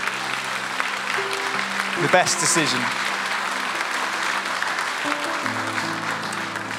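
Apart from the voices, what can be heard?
audience applause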